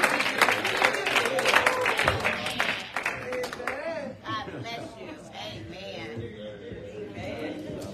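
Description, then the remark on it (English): An audience on its feet claps rapidly and loudly in praise of God for a few seconds, then the clapping gives way to a mix of raised voices calling out praise, with scattered claps continuing underneath. “Listen, if you love the Lord Jesus Christ, stand up on your feet and give God a hand clap and praise.”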